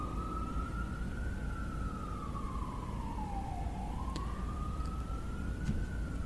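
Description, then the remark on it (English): An ambulance siren wails outside with a slow rising and falling tone over a steady low rumble of traffic, with no one speaking. “Sorry, ambulance. I don't want it to get picked up.”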